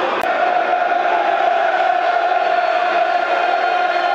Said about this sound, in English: Well, the crowd not as big in the Den tonight, in good voice, as you'd expect. Looks about half full at the moment.